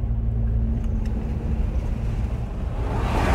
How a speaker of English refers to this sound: We're on the eastern edge of the Dujar Reserve, and we're just passing this constant stream of logging trucks.